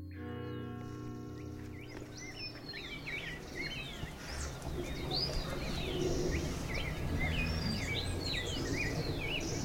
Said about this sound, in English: At 6 a.m., just before the sun rises above the Andes, there is a riot of birdsong. The clamor is brief, and only lasts in the minutes it takes the pale sunlight to turn from silver to lemon chiffon.